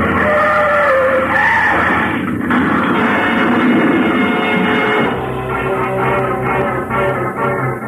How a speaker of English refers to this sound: The plane sort of stumbled over the car, rolled up on its nose, and stayed there.